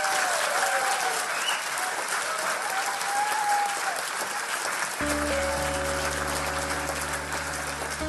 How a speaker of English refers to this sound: And ladies and gentlemen, please give a massive round of applause to Professor Lance Workman.